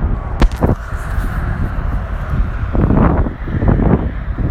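wind blowing outdoors

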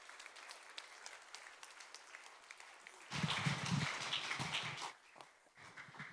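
audience round of applause

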